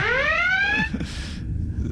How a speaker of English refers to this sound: By the way, this alarm is going a lot. It went a lot longer than I thought it would.